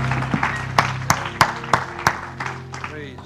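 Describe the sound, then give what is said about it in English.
An audience at a church service claps and cheers, giving a hand clap and shout of praise before being seated, with loud, sharp hand claps falling into a steady rhythm over a bed of shouting, whooping voices that trail off near the end. “Give him a hand clap and shout of praise before you're seated.”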